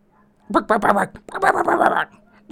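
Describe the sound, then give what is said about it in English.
A dog barks in two quick bursts of several sharp, fairly loud barks, with a short pause between them and another bark starting right at the end. “Damn, that dog's a pain in the ass.”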